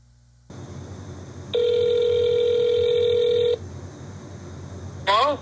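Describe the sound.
A single steady ringback tone sounds over a phone line for about two seconds against faint line hiss, during a thank-you call to a former teacher, then after a pause a voice briefly answers.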